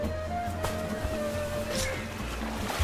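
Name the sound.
water splashing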